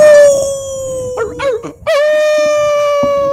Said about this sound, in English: But that's the reason for the howl. It's roll call.